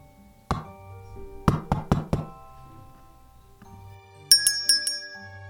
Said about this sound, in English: In desperate straits, the child walks up the wisteria path and knocks at the eerie parlor's door.